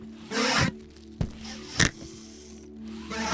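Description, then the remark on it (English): A short rain stick is tipped, giving a brief rattling hiss of falling beads that stops quickly. Two sharp clicks follow, then a faint rustle, all over a low steady hum. “Oh, shortest rain stick ever.”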